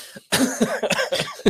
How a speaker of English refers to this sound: Sorry. Cough.